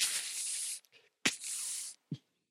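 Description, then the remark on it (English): A garden hose sprays water in two bright, hissing bursts of under a second each, separated by a short pause, with a sharp click opening the second burst and a dull thump after it. “By thunder, I mean I will turn on the hose.”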